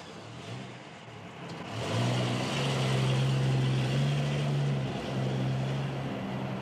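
A car engine rumbles to life and revs up, then holds a steady, loud mid-pitched drone as the car drives off on Christmas Day with the radio off, with road and engine noise filling the rest.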